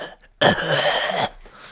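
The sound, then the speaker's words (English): A single loud cough with a harsh, raspy, drawn-out quality, lasting under a second and standing alone with no talking around it. “I just cough all the time”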